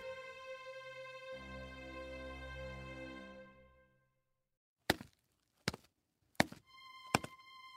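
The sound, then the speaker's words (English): A sustained tonal hum fades out, then a person trips and falls: four sharp thunks and knocks land about a second apart, with no voices. “Oh, nothing. I tripped. I'm fine.”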